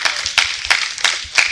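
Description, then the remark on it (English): An audience claps hands together in praise of God in a steady rhythm, about three sharp, loud claps per second, with a dense wash of many overlapping hands between the beats and no voices. “Give God a hand clap of praise up in here, up in here.”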